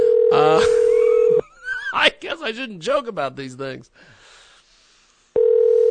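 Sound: skype call dialing tone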